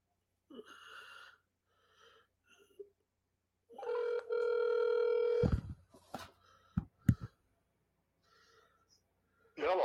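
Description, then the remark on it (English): An outgoing call to a phone hotline being placed: a few short electronic tones, then one steady ringing tone on the line, followed by sharp clicks as it connects and a brief voice at the end. “Let's go ahead and give him a call.”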